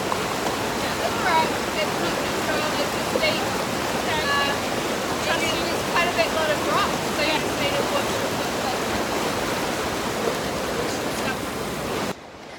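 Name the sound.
rushing river water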